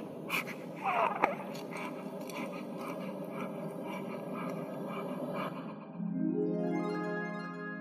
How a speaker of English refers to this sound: Now we've got this lovely, beautiful baby. You can hear her breathing.